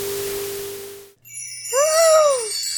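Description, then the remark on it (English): A wash of hiss gives way to bright, shimmering wind chimes ringing with overlapping high tones, joined midway by a low swooping hum that rises and falls beneath them. “Listen to the wind chimes.”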